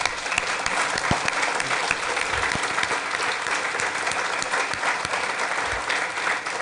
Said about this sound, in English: So on behalf of the entire leadership team that made that happen, I'd like to lead a nice round of applause.